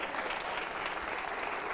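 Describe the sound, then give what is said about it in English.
A crowd claps hands together in a steady, dense burst of applause, a continuous crackling wash of many overlapping claps with no voices rising above it. “Clap your hand.”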